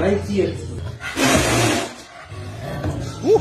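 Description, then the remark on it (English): A single loud, raspy roar lasting about a second bursts out from a pet cougar on a bed in a bedroom, with people talking before and after it. “I've got a cougar in the bedroom.”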